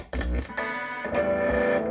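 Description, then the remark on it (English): A distorted electric guitar plays loud, sustained chords through an MXR Distortion Plus pedal plugged directly into an Orange amp, with sharp pick attacks around each change and a thick, gritty tone ringing out. “You take my MXR Distortion Plus, thank and I'm going to plug directly into my Orange amp, because fuck that Big Muff.”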